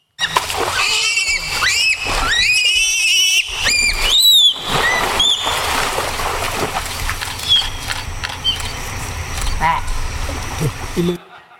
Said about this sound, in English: I'll show you a little sequence of this. This is a little fight that happens in the river at that sanctuary, and you will see a quick fight and a very quick reconciliation.